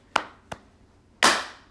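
A lone man claps three times using his buttocks, with uneven timing: two sharp, bright claps close together, a pause, then a louder, fuller final clap that rings out briefly.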